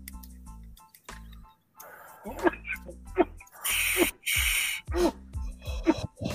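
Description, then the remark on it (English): A man coughing after taking a bong hit with no water in the bong: harsh, breathy bursts of coughing come in a ragged series, with two loud hacking fits in the middle, broken up by gasps and wheezy breaths over a low steady hum. “since he's coughing”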